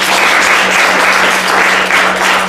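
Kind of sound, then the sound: crowd, audience applause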